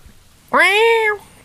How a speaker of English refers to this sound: Where'd that fucking cat come from? Meow.